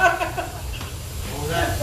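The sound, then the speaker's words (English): Steady hiss of running water from a tap as a man washes his dishes, continuing throughout beneath a person's voice talking over it. “He have to wash his dishes on a time when we talking.”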